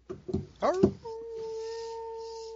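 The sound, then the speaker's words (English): A few short, rising vocal yelps lead into a long, steady howl that holds one pitch for over a second: wolves howling in the distance, from a forest. “In the distance, from the forest, you hear a howl of wolves.”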